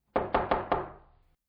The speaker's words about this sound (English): The street hair here was short and curly, difficult to walk through, but not impossible, and soon he stood before the door of number 69, where he knocked.